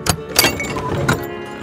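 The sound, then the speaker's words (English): A trailer door slams shut with a loud metallic bang, followed by a couple more sharp knocks and a rattling resonance that hangs on briefly. “slams the door shut with a wolfish smile.”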